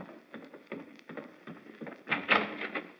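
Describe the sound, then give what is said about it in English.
Someone knocks at the front door: a run of dull, woody raps at an uneven pace, growing louder and more insistent toward the end, with no voices. “Oh, Miss Kitty, there's the front door.”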